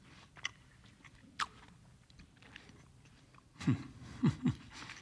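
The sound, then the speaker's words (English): Crunchy chewing of an apple being bitten into, with a few scattered bites early on and a burst of three louder, wet crunches near the end, no talking. “As soon as I'm done chewing this,”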